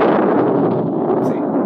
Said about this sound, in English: No, it's thunder. Oh, thunder? Yeah, the sound of lightning striking the ground. Oh, that's pretty cool. Not really. It's just kind of loud.